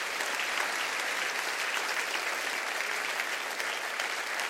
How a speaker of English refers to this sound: Come on, stand up for Jesus and clap your hands. Stand up for the Lord and clap your hands and say, yes, yes, yes, I will take you just as you are.